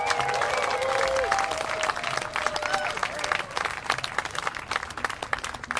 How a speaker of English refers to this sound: So let's give a big round of applause. Show him some love,